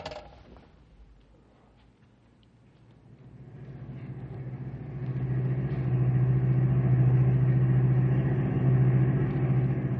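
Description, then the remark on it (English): A car drives along, its engine rumbling low and steady, growing louder over several seconds into a sustained droning hum with road noise; no one speaks. “Pull alongside Pat's car, pal.”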